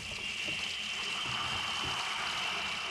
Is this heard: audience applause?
no